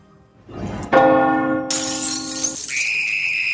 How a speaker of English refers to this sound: The doorbell? Who in the Dark Lady's name could be disturbing me at this hour?